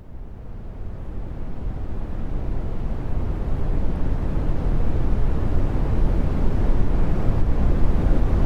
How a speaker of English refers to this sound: But have some remastered brown noise for 8 hours. Except I won't make this 8 hours. So smoothed brown note, smoothed brown noise.